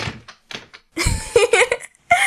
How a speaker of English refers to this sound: put the chairs down now. I won't have you juggling in my classroom.